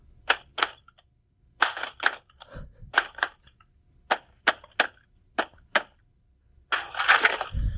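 Improvised drumming made by knocking a head on a table and a foot on a toolbox: a loose, uneven run of sharp knocks and clacks, a few duller thumps, ending in a rattling flurry.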